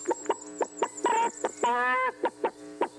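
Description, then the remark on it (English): A voice imitates a chicken clucking: a rapid series of short, clipped clucks broken by two longer, drawn-out squawks, fairly loud, with no other talking. “And your clucking makes it even more creepy.”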